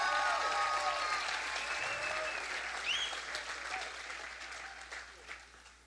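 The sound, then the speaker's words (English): A church audience claps during a sermon in a dense, sustained burst of applause, with a few high whistles and cheers rising above it, the clapping slowly tapering near the end. “If you're going to clap, somebody ought to clap.”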